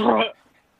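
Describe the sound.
A single sneeze: one loud, abrupt voiced burst lasting about a third of a second, cutting off sharply into a faint tail and then silence.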